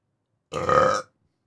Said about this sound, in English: All right, I just burped. I gave it a 10.